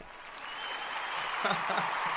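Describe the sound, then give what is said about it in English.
An applause sound effect: a burst of crowd applause, dense and steady clapping that swells slightly toward the end, with faint voices murmuring underneath in the last second. “We're gonna give you the applause on that one.”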